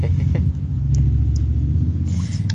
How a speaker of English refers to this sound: Shout out to whoever is starting revving that motorbike. Yeah. Which, I don't know. It's cool. Hopefully it's... it makes us sound badass.